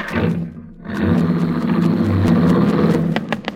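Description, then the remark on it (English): A car engine roars to life after a brief lull and keeps revving loudly and steadily as Pittsburgh Markham and Cash Evans drive away in Josie Winters' car, with a few sharp clicks near the end and no talking. “But Pittsburgh Markham and Cash Evans didn't even see this miracle as they ran out to her car, jumped into the front seat, and drove it away.”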